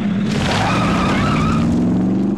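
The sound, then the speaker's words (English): Street traffic with a loud, sustained screech of car tires skidding, a steady rising squeal over the rumble of engines, continuous for a couple of seconds. “Sounds like a lot of traffic in your library.”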